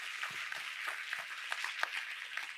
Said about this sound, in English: Give this boy a round of applause, ladies and gentlemen. My God.